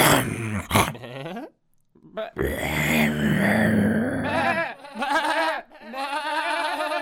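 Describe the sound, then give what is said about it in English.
A voice imitates a wolf, growling and snarling in loud bursts that rise into strained howl-like cries, broken by a brief pause near the middle. “It was a wolf.”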